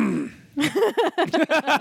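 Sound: cough or throat clearing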